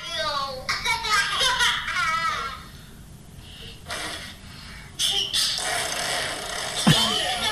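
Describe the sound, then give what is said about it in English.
Children blow buzzy, sputtering fart noises against a window glass on a snow day in several short bursts, with high-pitched kids' voices chattering and squealing between the raspberries. “Are they blowing fart noises onto the window?”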